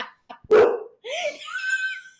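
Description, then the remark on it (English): A dog gives one sharp, loud bark, followed by a higher, drawn-out yelping whine. There is no talking. The dog reacts to people saying hello, thinking somebody has arrived. “My dog thinks there's somebody here. Because we said hello.”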